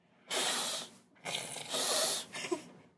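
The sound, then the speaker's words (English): A person imitates a cat's hiss with three breathy, airy bursts: a short one, a longer drawn-out one, then a brief final puff. Moderately loud, with no talking. “My cat. That is not a cat noise. You gotta hiss like.”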